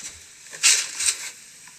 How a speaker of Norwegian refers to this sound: Det da lyden av en katt som blir satt opp i en kattedo.